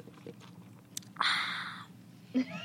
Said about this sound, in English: I have got my iced coffee, size medium. Shout out Duncan. I'm going to sip some ASMR.